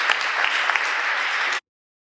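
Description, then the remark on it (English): A crowd claps steadily in a dense burst of applause, fairly loud, lasting about a second and a half before cutting off abruptly into silence. “All right, give everybody a round of applause so I can get back up on stage.”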